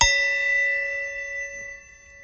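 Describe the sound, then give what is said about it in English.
A small, empty bell in an office is struck once, giving a bright metallic ring with a sharp onset, then lingering in a clear, sustained shimmer that slowly fades, heard alone. “So we have this little bell in our office, and it's empty.”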